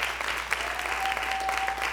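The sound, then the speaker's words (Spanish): A crowd claps steadily and loudly for Christ Jesus, a dense wash of applause filling the whole moment with no one speaking over it. “dale un fuerte aplauso a Cristo Jesús.”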